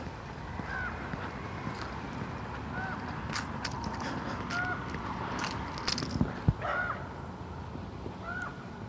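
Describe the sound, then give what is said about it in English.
A crow caws several times at a steady pace as it flies by, over a continuous outdoor background hum with a few faint clicks. “Crow going by.”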